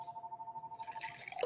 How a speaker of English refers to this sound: The phone is ringing, but we're not open.